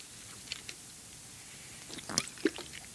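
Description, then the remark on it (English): Soft mouth and liquid sounds: a couple of faint clicks, then a short cluster of wet slurping and swallowing noises as a speaker sips water. “You have a sip of water if you don't mind.”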